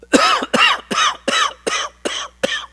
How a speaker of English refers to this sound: Oh, you sound like you have a terrible cough. Nope, wasn't me. No, that wasn't me.